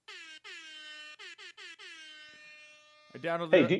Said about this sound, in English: Air horn.